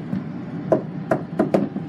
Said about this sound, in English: Hello? Right, I have to knock.